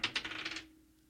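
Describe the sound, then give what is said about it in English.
A die clatters across a hard surface in a quick run of sharp, bright clicks that speed up and fade within about half a second as it settles. The sound is fairly quiet. “Or are they going to need to re-roll?”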